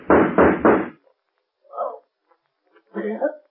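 Three loud gunshots fire in quick succession, sharp, as Rankin shoots at the Shadow, followed by a pause and a couple of softer, muffled sounds.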